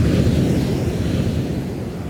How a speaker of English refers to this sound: Your bodies feel an unnatural wind, but they remain stationary, and you can only see these purple streaks in your vision. A loud, loud gust of air clouds the screams of awe and fear around you until it's all you can hear.